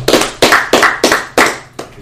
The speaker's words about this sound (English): Let's clap it up